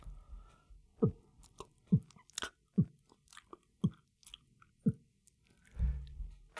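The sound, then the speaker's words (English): Wet chewing with a steady rhythm of about one squishy bite per second, then a low gulping swallow near the end as someone eats a deviled egg. No talking. “Bro, I made you eat a deviled egg and you threw up in your mouth.”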